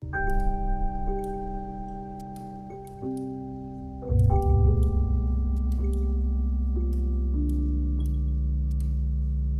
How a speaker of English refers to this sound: So there are these cylinders with water, and there are these bubbles going up, and these little tones are triggered, and there are these little screens at the foot of each tube, and every time a bubble goes off,